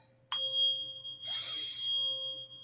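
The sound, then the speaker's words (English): A struck, bell-like healing tone, the love heart chakra frequency, rings out and holds steady with bright high overtones, joined midway by a brief wash of airy shimmering noise before it fades. “This is the love heart chakra frequency.”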